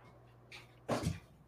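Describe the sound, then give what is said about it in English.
A dog, one of the speaker's dogs, gives a single short, gruff woof, preceded by a faint rustle, over a quiet background with a low steady hum. “There's my dog, one of them.”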